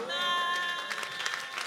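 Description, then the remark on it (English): An audience claps for the Lord during a sermon in a dense, uneven patter, with a sustained organ-like chord ringing at the start and fading out as the clapping continues. “Give the Lord a clap, prophet.”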